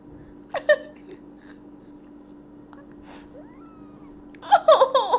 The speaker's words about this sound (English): Can you meow again? Do it. Do it. Do it again.